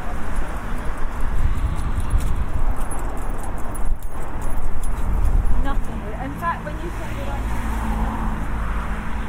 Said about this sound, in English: And back in front of the cloud there's a dog coming. You can hear the jingling of its collar.